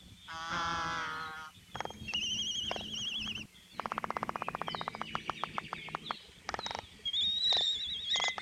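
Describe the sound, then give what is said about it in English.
Laysan albatrosses (goony birds) give harmonic whining and groaning calls and high whistled notes, broken by a long run of sharp, rapid bill claps in an uneven rattling rhythm, part of their courtship displays; a Cornell Lab of Ornithology field recording. No one speaks. “This is also the best time to hear the various whining and groaning types of calls, as well as the bill clapping, which is part of their impressive courtship displays.”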